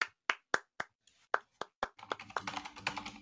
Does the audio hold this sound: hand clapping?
yes